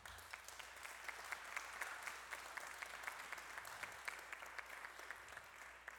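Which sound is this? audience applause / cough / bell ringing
audience applause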